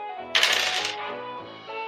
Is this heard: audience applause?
no